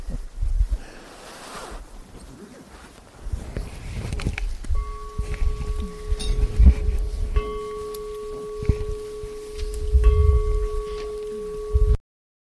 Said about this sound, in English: And she's very keen to ring the bell.